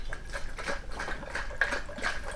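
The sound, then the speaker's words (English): Water dribbles and splashes in a series of short, irregular bursts as an upside-down Yeti bottle with its straw lid open is shaken, each small spurt of liquid fairly quiet. “But you pour this upside down, and we're going to open it up. And maybe a couple dribbles. Let's see if I shake it and see what happens.”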